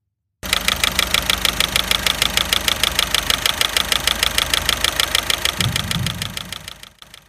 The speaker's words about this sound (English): Tick, tick, tick. I can hear a noise. But the weird thing is that it's ticking in time with the revs of the engine. When the engine is slow, the tick is slow. And when I press on the accelerator, the noise goes faster.